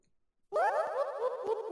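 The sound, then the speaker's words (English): After a brief silence, a quiz contestant's game show buzzer is tested before a buzz round: a loud, springy buzzer effect bursts in, a bouncy boing-like tone with wobbling, jumpy pitch that sustains for over a second with no voices. “So, Suit, could you please press your buzzer? Right, so Suit is the jumpy noise.”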